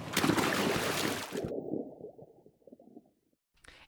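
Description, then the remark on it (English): A loud splash as a person doing a cannonball jump plunges into water, followed by muffled, bubbling underwater gurgles that fade out, then a brief final slosh. “Cannonball!”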